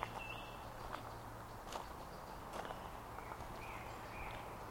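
footsteps walking outdoors

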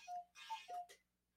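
clock chiming the hour

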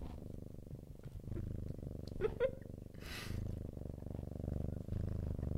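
cat purring loudly

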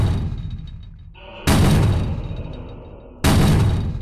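pounding on a door

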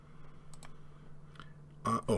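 computer mouse clicking

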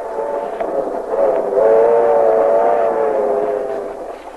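moving train

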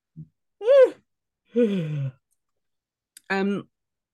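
a person yawning

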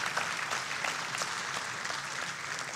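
audience applauding

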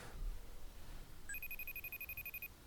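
phone ringing tone

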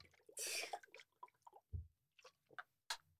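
drinking water

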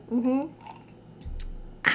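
drinking water

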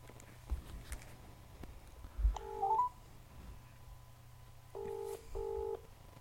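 telephone keypad dialing tones

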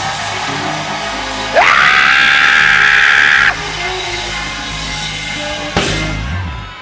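audience screaming

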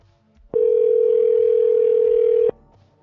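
telephone tone

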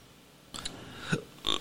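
burp

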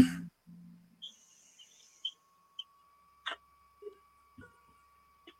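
birds tweeting

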